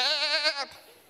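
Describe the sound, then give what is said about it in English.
A single sheep bleats, one wavering, quavering cry lasting just over half a second before trailing off into quiet. “And Samuel says, what is the bleating of the sheep and the lowing of the cattle I hear?”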